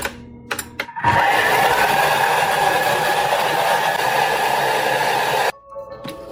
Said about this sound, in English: And I'm just going to blend that all up. You can use any powerful blender. I'm going to use my Thermomix and just mix it for 1 minute on speed 8.